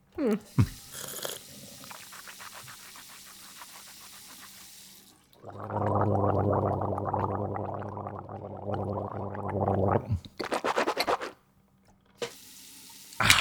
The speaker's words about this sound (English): How about you take the toothbrush out before you start talking? Wait. Oh, sorry. I forgot it was there.